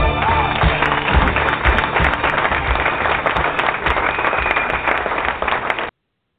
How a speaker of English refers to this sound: Yes, yes, clap it up.